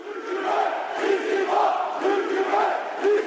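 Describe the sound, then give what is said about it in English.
A large protest crowd at a rally in a park against police brutality shouts and chants together in a loud, rhythmic roar, voices rising in repeated waves without pause, dense with no single speaker standing out. “And just hours ago, security forces advanced into the park, firing water cannon and tear gas at the crowds.”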